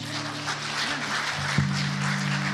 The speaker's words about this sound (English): Give the Lord the applause he deserves.